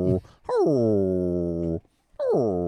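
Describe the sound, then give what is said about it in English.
A Catahoula leopard dog whimpers in a bar: a long, loud whine that slides down in pitch and holds, then a second whine begins after a short pause. “Now, what kind of dog is Rosie? Kalahula leopard.”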